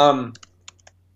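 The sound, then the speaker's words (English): A voice trails off, then a few scattered keystrokes tap on a computer keyboard, four or so crisp clicks at an uneven typing pace against a quiet background, as someone types in Craigslist to look at arcade postings. “I was on Craigslist one day, which I'm now typing in to look at Craigslist, more arcade postings.”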